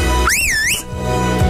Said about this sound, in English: I'm a good whistler. I can do the melodic whistle. I can do the loud yobby whistle.